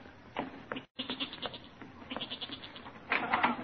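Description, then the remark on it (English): A restless goat down in a cellar bleats repeatedly in wavering, nasal cries, the calls coming in uneven bursts with a brief gap, the last ones louder and more insistent, with a slightly muffled, enclosed quality. “That's the goat. He's getting restless down in the cellar.”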